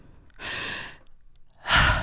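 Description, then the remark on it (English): Two slow, deliberate calming breaths, a long airy exhale followed after a short pause by another heavier breath, fairly loud, with no talking. “Do your breathing.”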